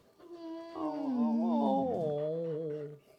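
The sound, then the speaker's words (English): A dog lets out a long, drawn-out howl with a wavering pitch that slides downward midway, fairly loud, holding for about three seconds with no talking over it. “She sounds like the whale in Finding Nemo.”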